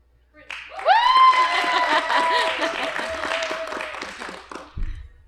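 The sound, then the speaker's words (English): An audience bursts into loud applause and cheering as an applause-meter vote, with a sharp rising whistle cutting through at the start. The clapping and whoops hold steady for several seconds, then fade and end with a thump. “Okay, applause meter. I need points.”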